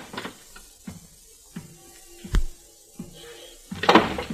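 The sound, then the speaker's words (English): A door opens in a suite: a few soft knocks and shuffles, a sharp latch click partway through, then a brief rasping swing at the end, with no voices. “at the same time, the door opened in the suite and the silhouetted figure of a man entered the room.”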